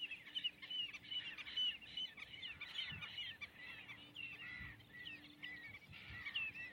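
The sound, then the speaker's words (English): A noisy chorus of redshank calls on a warm day on 20 February, many sharp, high piping notes overlapping continuously for the whole stretch, with no talking and a faint low hum underneath. “We got a lot of racket from the red shanks.”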